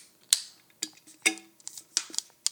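A beer can is opened: a series of sharp metallic clicks and scrapes with brief bursts of fizzy hiss, spaced irregularly over a couple of seconds, with no voices.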